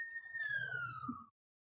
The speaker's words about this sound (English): I don't know if you heard that siren.